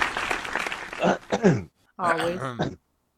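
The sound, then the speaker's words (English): A brief burst of dense clapping lasting about a second and a half alongside voices, followed by a short spoken exclamation after a pause. “They already applauded you. You need more?”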